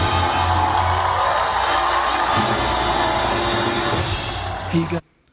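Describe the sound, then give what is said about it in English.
A large movie theater crowd cheers loudly and continuously, full of whoops and excited shouting, for about five seconds before cutting off abruptly into silence. “Sorry, I just had to play that quick clip because we needed to hear that crowd.”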